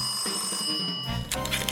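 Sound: telephone ringing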